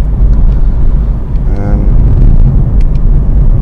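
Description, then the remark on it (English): Steady, loud low-frequency rumble inside a 1.6 automatic car on a drive into work, engine and road noise droning continuously with a brief tonal whine in the middle. “A Rambling Drive Into Work”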